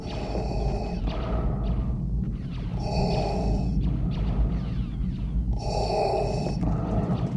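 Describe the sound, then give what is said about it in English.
Slow, rhythmic mechanical breathing, Darth Vader's breathing sound effect for Star Wars, made by air flowing through narrow rubber hoses: hissy, airy inhales and exhales with a bright whistling edge on each cycle over a steady low rumble, no talking. “It had a little bit of a click and clank to it, so that the flow of air through the narrow rubber hoses had a very cold, hissy quality to it. And thus, Darth Vader's breathing sounds were created.”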